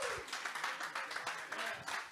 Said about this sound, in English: If you're thankful for that, I want you to give God a mighty hand clap of praise. Hallelujah.